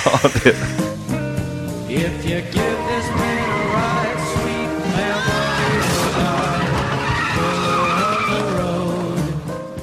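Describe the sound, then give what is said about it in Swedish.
A short quiz jingle made of car sounds, marking the start of a weekly quiz: a loud, revving engine with screeching tire squeals layered over it, continuous and busy for around ten seconds. “Det där är ju motorblocket, jingelen som den heter i min dator, och det betyder ju att vi befinner oss i den frågesport som vi har varje vecka,”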